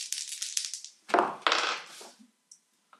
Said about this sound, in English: What I need for you is to roll dice percentage with no bonus.